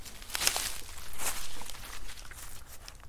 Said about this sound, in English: We're getting rain.